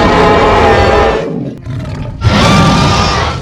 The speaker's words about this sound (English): It's just like the roof is very tall, and the dragon just perches on it as it opens its maw and it screams into the daylight.